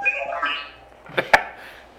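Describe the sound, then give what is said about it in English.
A short burst of warbling electronic droid beeps and chirps, mid-to-high pitched and fairly quiet, followed by a couple of sharp clicks and a brief burst of noise. “I believe that's droid for what that.”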